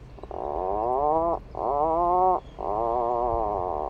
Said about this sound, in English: That's not a creaky door. Believe it or not, you're actually listening to an Atlantic puffin, a small seabird with an iconic bright orange beak, once hunted to extinction in New England.